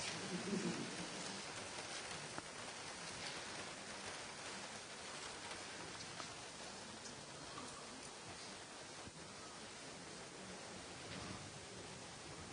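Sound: rain falling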